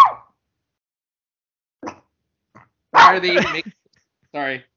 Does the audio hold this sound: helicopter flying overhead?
no